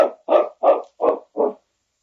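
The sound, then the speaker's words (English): A dog barks five times in a steady, evenly spaced series, each bark full and loud, right outside a cabin door, with no other sounds around it. “Sounds like that dog is right outside the door.”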